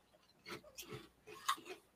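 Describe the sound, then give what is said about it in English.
Crisp crunching of a crunchy shrimp snack chip being chewed, several irregular bites over two seconds, fairly quiet with no talking. “Shrimp snacks. Each one of us get one, and we'll taste it all at the same time.”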